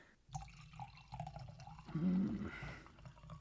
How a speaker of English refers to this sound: just need to pour a glass of water.